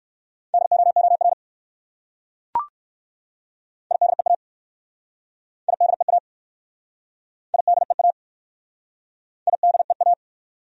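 Fast Morse code at 45 words per minute sending common English words, in a steady mid-pitched tone, keyed in five quick bursts of dots and dashes separated by short pauses, with a single brief click early on. No voices.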